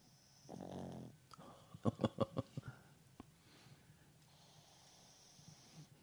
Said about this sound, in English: Oh, wow, he's snoring? That's FIFO.